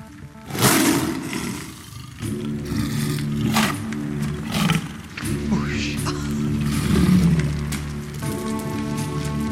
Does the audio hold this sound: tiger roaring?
yes